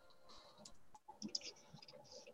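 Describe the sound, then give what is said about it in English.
Soft, quick clicks of typing on a computer keyboard, with irregular keystrokes that cluster into a brief flurry partway through, quiet, with no voices. “I'm typing this.”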